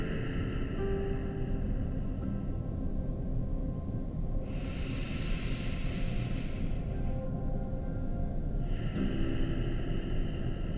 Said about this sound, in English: This time, inhale through the nose. Keep the ha sound in the back of your throat, but keep your mouth closed. This is the exhale of an ujjayi breath.